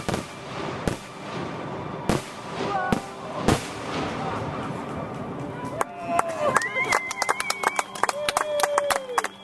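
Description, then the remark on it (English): Fireworks go off on Independence Day night, 1988, in Claremont, Minnesota, with sharp bangs, spaced out at first, then a rapid flurry of cracks and pops with rising whistles, over a steady murmur of voices in the background. “All the fireworks shows were done for the night, and fireworks were all illegal in Minnesota at the time, but there were many in Claremont known to party and potentially cause problems.”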